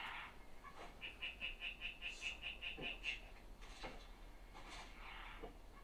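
A tree frog gives a quick, evenly paced run of about a dozen chirpy croaks lasting a couple of seconds, moderately quiet, with scattered rustling and clattering noises around it.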